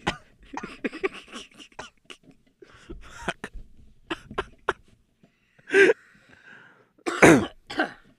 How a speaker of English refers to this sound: You know what? I wasn't fucking coughing at all today, you know. What happened? Until I got here.